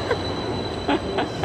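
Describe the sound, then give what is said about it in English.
A tram rumbles steadily past, a thin high metallic squeal ringing over the noise, with a few short brighter screeches from the wheels grinding on the rails. No one speaks. “You don't get run over by a tram.”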